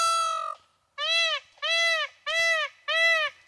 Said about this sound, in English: So Hillside Terrace of Brandon, they said a pair of peacocks moved in the neighborhood several years ago, and the flock has since grown to more than 50 birds. So imagine you're in this neighborhood and you got 50 peacocks and they're doing this.